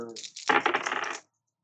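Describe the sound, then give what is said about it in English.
Three dice clatter and tumble across a hard tabletop in a tabletop game, a quick burst of rattling clicks about a second long that ends abruptly, with no one speaking; they land on two fours and a six. “But, well, you roll those three positive dice for me.”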